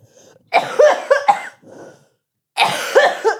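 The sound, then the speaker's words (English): Harsh coughing in a quick burst of several rough hacks, a short pause, then another loud cough fit, with no talking. “Just edit around the coughs.”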